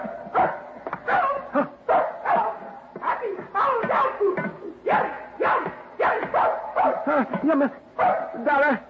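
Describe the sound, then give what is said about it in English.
A female dog barks and yips in a rapid, nearly nonstop string of loud vocal bursts, some stretched into warbling, almost talk-like yowls, for several seconds. “Do you hear? She's saying, happy holiday, dog food.”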